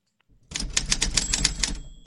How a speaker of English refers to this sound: Great job. Great typewriter.